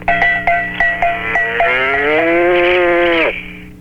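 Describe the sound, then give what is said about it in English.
A novelty cow alarm clock made in Japan lets out a loud, electronic-sounding moo: a few choppy stuttered pulses, then a long sustained bellow that drops sharply in pitch at the end. “It sounds like an Arnold Schwarzenegger cow.”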